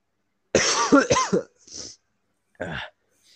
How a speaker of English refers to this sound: Dude, I hate coughing.